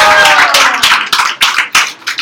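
A crowd at the Yop open mic bursts into a round of applause, many hands clapping in a dense, bright, steady patter that stays loud for a couple of seconds, with a few sharper individual claps standing out.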